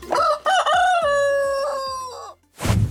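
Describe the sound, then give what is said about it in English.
A rooster crows once, loud, a long harmonic cock-a-doodle-doo that rises, holds and trails off, followed by a brief rustle or flutter. “And then wake up every morning, like 5:30, we wake up when chicken starts cuckoo and we are all wake up.”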